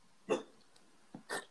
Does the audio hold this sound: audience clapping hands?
no